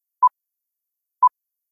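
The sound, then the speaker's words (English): Two short inserted electronic beeps, evenly spaced about a second apart, each a clean steady mid-pitched tone over silence. “I'm going to insert in, though, the little, like, beep, beep, beep, you know, so people have a chance at listening to this.”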